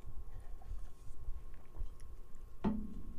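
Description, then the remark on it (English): Someone takes a drink of water: faint, soft mouth sounds over a low steady hum, then one sharp, brief gulp-like knock near the end. No one speaks. “Sorry, I need to drink some water.”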